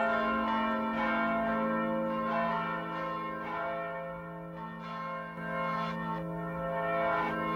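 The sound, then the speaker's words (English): A church bell high above a house rings steadily, its rich, humming tones overlapping and sustaining between repeated strikes, with no voices present. “Somewhere high above my house, I hear the sound of a bell starting to ring.”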